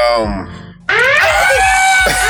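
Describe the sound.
A man lets out a loud, strained scream mimicking Godzilla's roar; it starts abruptly after a brief vocal lead-in and sustains harshly for over a second.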